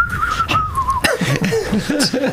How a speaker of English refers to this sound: Hey, he's always whistling a tune in his head.